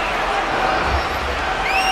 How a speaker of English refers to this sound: I can't see the VIP boxes. Everyone is jumping up and down. The crowds are going crazy.